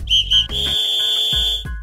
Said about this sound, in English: And there goes the final whistle for our sports discussion of the week.